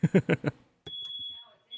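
A smoke detector going off in a house sounds with a steady, piercing high-pitched tone after a short burst of loud pulsed beeps, with a person speaking faintly underneath.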